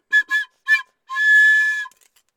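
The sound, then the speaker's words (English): Three quick slide whistle toots followed by one long, steady whistle note, fairly loud, with no talking. “I brought a slide whistle carrot.”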